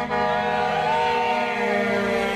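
Car horns honk continuously from passing vehicles for National Party supporters on the waterfront in Petone, Wellington, several tones overlapping into a loud, steady blare with a slight rise and fall in pitch, without any talking.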